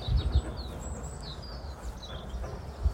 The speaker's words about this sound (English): Right, racket going on here this morning with the birds.